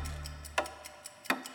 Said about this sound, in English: a loud ticking sound